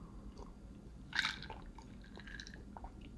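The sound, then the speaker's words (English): Someone drinking water: soft wet sips and swallowing sounds, with one louder gulp early on followed by faint mouth clicks. Quiet and intimate, with no talking. “Drink some more water here.”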